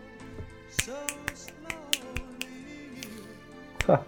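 A run of sharp finger snaps, about eight or nine crisp clicks at an uneven, loose rhythm, heard over a soft sustained musical tone with no one talking.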